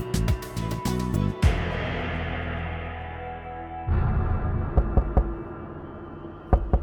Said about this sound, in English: At the sound of persistent knocking on the door, 20-year-old Banaz rose from the couch and immediately hesitated.